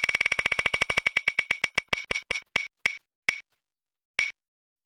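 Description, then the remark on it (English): A prize wheel is re-spun to pick next week's film, landing on Pet Sematary 2. It ticks in rapid, evenly spaced clicks that gradually slow and spread apart, the last few sharp ticks landing after long gaps as it comes to rest. “I think we're going to have to re-spin the wheel without Rain.”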